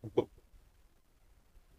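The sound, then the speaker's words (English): A person vocally imitates a little burp: a short, throaty double gulp at the start, followed by near silence and a sudden breathy burst right at the end. “He does a little burp and then he does that little smile.”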